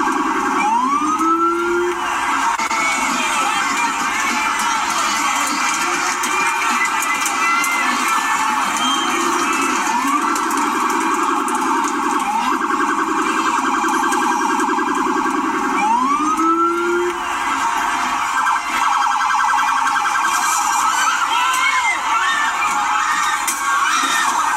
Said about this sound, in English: you can't really see, but a guy starts jumping on the police car as the police car is just there with the sirens on, and there's probably 200 plus people around surrounding this entire car and just throwing cones and water bottles at this thing.